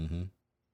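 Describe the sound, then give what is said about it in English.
A cat lets out one short, loud meow, cutting off abruptly into near silence. “Oh, don't ever get a cat.”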